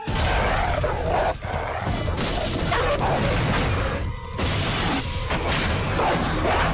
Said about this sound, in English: What was that? My dog. What kind of dog do you have? I have a regular dog.